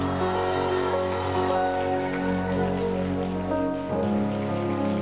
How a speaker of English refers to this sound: Harvest Church sisters, will you give a round of applause for our amazing speaker